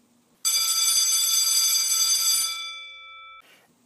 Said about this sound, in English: That bell. That assurance that our time is valuable and you have someplace waiting for you when class ends.